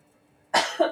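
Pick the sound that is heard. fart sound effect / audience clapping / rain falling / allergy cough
allergy cough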